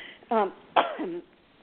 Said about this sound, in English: Forgive me, I'm getting over that flu, so I've still got a little bit of my cough. So I'm having to, like, try to do a cough drop here.